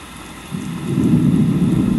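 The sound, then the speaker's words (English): A thunderstorm: a deep, heavy rumble of thunder swells in after a moment and holds loud, over a steady hiss of rain, with no voices. “He loves you, and believe it or not, in the midst of all the rain, and in the sound, the loudness of a thunderstorm, he's there.”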